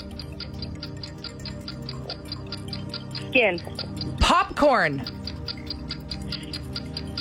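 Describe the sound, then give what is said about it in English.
A steady, rapid ticking of a game countdown timer runs throughout, evenly spaced and fairly loud, while two people trade quick single words over it in a word-association game. “Okay, you did so good, and we still had 10 seconds left on the clock”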